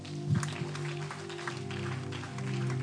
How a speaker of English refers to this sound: Another clap for Joseph.